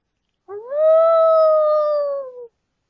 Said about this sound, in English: In the distance, the howl of the wolf sounds out into the obsidian night.